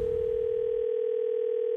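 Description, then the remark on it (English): A steady, unbroken telephone tone hums at a constant pitch for almost two seconds, fairly loud, with some low rumbling noise underneath at the start. “Don't ever answer your phone. It could be Freddie Mac calling to check his facts.”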